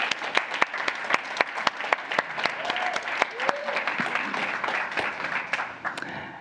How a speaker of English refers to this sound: So could you give her a big round of applause as she comes?